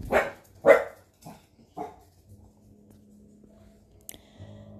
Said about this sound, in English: And you'll enjoy the sound of my dog barking.